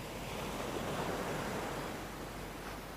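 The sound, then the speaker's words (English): Gentle waves on calm water lap softly at the shore's edge, barely touching a person's shoes, in a steady, continuous wash, close by and fairly quiet, with a faint breath of wind and no voices. “I've managed to get myself to the edge of the water, watching the waves barely touch my shoes.”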